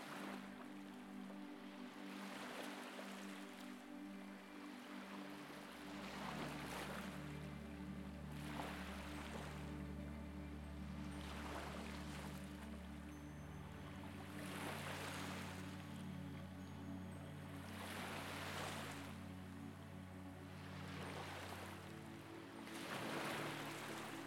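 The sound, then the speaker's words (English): Ocean waves wash rhythmically onto the shore, each surge rising and receding every few seconds, layered over a soft, steady low drone of ambient music. “And just take a few moments to do this now as you hear the waves.”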